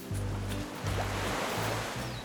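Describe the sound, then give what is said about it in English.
Ocean waves wash steadily onto a beach in Barbados in a continuous broad rush of surf, with a low droning hum running underneath and no voices. “Outside his window, you can see the crystal water, hear the waves crash.”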